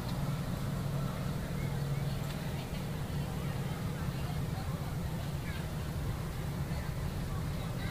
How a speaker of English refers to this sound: Somebody's a pretty good driver. You come see? RC boats.